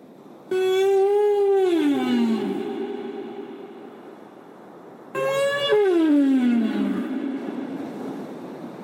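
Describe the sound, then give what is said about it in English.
Two long, loud whale calls, each holding a steady tone before sliding down into a low moan, trailing off in a deep, echoing wash with no talking. “And when you see a whale out to sea, making a blow, slapping its tail against the water, or breaching, jumping out of the water, you might think of the Ramanjeri and Kuwana story of Condilli, the keeper of the spark, who became a whale.”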